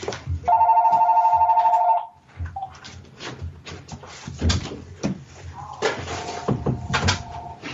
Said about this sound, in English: I'm sorry, I had to get rid of that phone. It was going off, and I was distracting me.